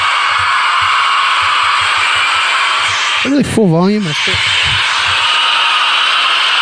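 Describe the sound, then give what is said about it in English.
A loud, steady wash of made crowd-noise effect runs throughout, dense and hiss-like, with a faint low thumping underneath and a brief spoken phrase breaking in midway. “I'm gonna find a different way to make crowd noise.”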